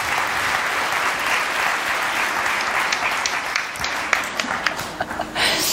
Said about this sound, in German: Ja, da kann man auch mal klatschen. Kann man auch mal klatschen, genau.